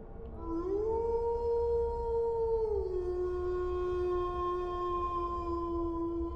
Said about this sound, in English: This is a road located about 1 mile from Frackville, Pennsylvania, and nearly 2 miles from Moore, Pennsylvania. My son said that it howled.